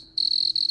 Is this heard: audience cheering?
no